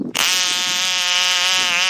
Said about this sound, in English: This is fucking, what kind of fucking, what kind of bullfrog's that? Cool one.